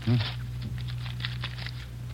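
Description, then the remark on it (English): Soft, scattered crinkles and crackles of cellophane being peeled off a new deck of playing cards, over a steady low hum, with a brief voice sound at the very start. “I haven't unwrapped them yet”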